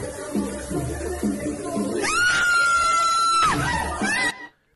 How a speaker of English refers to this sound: She always screamed like she was upset. Before it happened. She knew it was coming. She was pissed. It was a bad one.